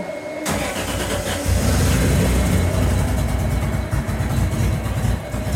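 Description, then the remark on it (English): A two-cylinder engine cranks briefly, catches after about half a second, and settles into a loud, steady, throbbing run with a low rhythmic pulse. No one speaks. “This is a 2-cylinder.”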